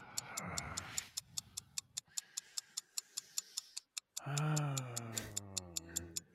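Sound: timer ticking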